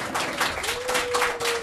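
A crowd applauds steadily, with dense overlapping clapping at a constant, fairly loud level and a faint steady tone ringing underneath.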